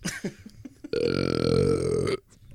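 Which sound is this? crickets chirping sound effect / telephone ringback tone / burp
burp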